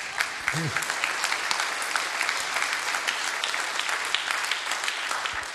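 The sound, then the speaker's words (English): An audience breaks into steady applause, a dense crackle of many hands clapping continuously for several seconds at an even, moderately loud level, with a brief vocal sound near the start. “That would be a great place to clap.”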